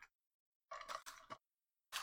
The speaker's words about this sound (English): I'm trying to mix up like six pieces of paper. It's quite hard.